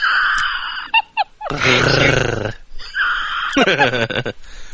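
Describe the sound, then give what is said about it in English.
A person imitates an animal growl on request, with two drawn-out, raspy, fairly loud vocal bursts separated by short clicks and breaths. “Can you do the growl for Bay?”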